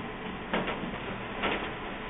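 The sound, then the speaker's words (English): An old HP LaserJet laser printer powering on after being plugged in, two short mechanical whirring bursts about a second apart over a steady low hum, fairly quiet, with no one talking. “Plug in this old HP laser jet.”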